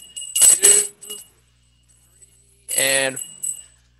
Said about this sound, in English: So I've got to ring my bell 3 times and then do a little countdown for the lighting of the tree.